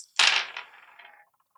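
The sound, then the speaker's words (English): A pool of eight dice, five white and three black, is rolled for a strike in a tabletop game. The dice hit a hard table with a sharp clatter, then rattle and tumble for about a second, settling with a few faint final clicks. No voices. “And my strike is 3, so I will roll 5 white and 3 black.”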